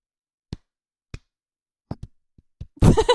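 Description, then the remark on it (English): Hand claps imitating cheeks clapping: two spaced slaps, then a quicker uneven flurry of softer pats, ending in loud laughter and talk. “I think mine clap like this.”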